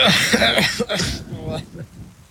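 A person coughs and clears their throat in a quick run of several harsh, raspy bursts that trail off into quieter sputtering.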